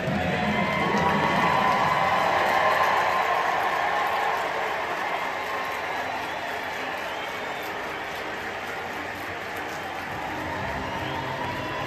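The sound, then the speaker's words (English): A large baseball stadium crowd applauds and cheers in a steady, dense roar as a woman waves to the crowd and walks to the mound to throw the first pitch, staying loud throughout, easing slightly toward the end, with scattered shouts rising from the clapping. “And she's waving to the crowd.”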